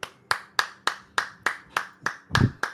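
Steady, rhythmic clapping welcoming a show guest: about nine sharp, evenly spaced claps in under three seconds, moderately loud, with a faint low thump near the end and no voices.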